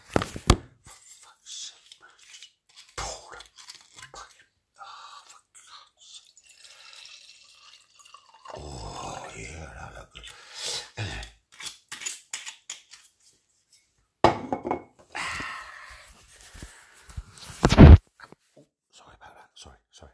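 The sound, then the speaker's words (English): Fiddling with a bottle in a kitchen: scattered clicks, scrapes and sharp snaps as a cap is worked at, with brief liquid sloshing and faint low murmuring in between. “Hang on. I can't open the bottle. Wait.”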